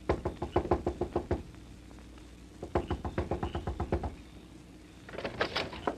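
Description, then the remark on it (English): Three bursts of rapid knocking on the door of Ma Jarrett's boarding house, each a quick run of sharp, fairly loud raps with short pauses between the bursts. No voices are heard. “Knock to me. On the door.”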